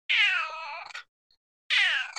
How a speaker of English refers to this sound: Okay. Your pusses are, they missed you. The kitties really missed you, huh? They're just really needy. They're really needy when it comes to attention and love.